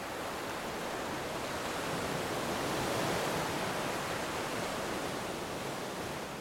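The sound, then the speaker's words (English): A continuous rushing wash of surf on a beach, swelling gently toward the middle and easing off again, steady and fairly loud with no voices. “Beach wave sounds, guided meditation”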